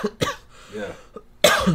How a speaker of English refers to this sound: Here it comes. It's coming back again. Yeah, we start coughing.